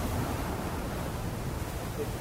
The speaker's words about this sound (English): I'm loving the waterfall.